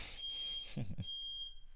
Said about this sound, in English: Except for my fire alarm just went off. Uh-oh. Are you about to go up in a... No, my roommates. Fiery blaze. My roommates were cooking breakfast.